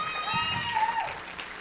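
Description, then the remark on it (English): An audience claps steadily for a moment, the dense patter of hands mixed with cheering voices and a rising, falling whistle-like tone, holding at a fairly even loudness throughout. “Let's give them another big hand applause.”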